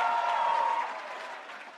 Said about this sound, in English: I like that I got applause for just a word. Like, that was it. Just, I said two words, and it was great.